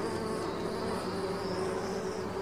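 A bee buzzes steadily, a continuous droning hum that holds at an even pitch and loudness without pause, with no voices present.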